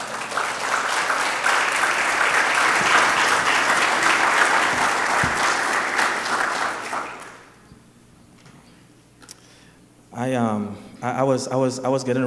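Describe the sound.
A room full of people claps steadily and loudly for several seconds, the applause thinning and fading out before a single voice begins speaking into the quiet.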